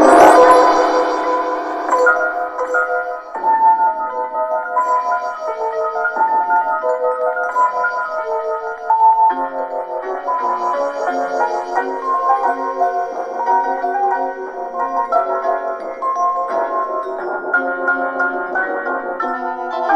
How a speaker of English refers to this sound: And you may have noticed throughout this issue that we've been using Dudley Simpson music to link everything together.